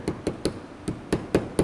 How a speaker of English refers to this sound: Make sure you're hammering them onto the top so you can see the chip and the SD card and all those connectors. Then you can put the little protector jig on top. And then you'll want to just gently hammer evenly.